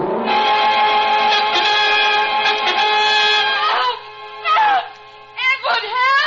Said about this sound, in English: I heard her open the door. There was a gasp, and then she uttered a terrible scream.